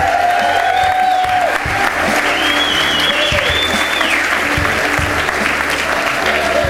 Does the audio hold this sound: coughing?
no